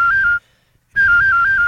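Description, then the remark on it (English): A professional whistler does a loud whistled imitation of a cell phone ringtone: two bursts of steady, high-pitched trilling tone with a slight warble, separated by a short silence. “Like, for example, I can imitate a cell phone.”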